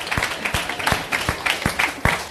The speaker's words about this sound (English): How y'all doing, Durham? First and foremost, man, I want y'all to give yourselves a round of applause, man. Y'all a beautiful audience. Y'all been really patient.